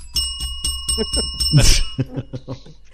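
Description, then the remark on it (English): A bell rings with a bright, sustained metallic tone that hangs and slowly fades while voices talk and sing rhythmically over it, followed by a louder clattering burst. “Where's the bell?”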